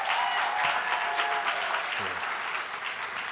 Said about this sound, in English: Clap it up for my beautiful bride.